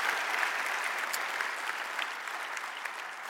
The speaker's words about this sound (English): So go ahead and give a round of applause again.